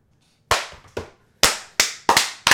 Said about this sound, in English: Like, we're clapping a corpse fucker.